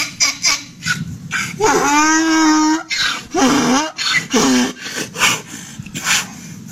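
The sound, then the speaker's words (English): A donkey brays loudly in a mating call, a series of harsh, rasping honks: one long drawn-out heave followed by two shorter gasping blasts, with breathy wheezing in between. “We need to hear some donkey mating noises.”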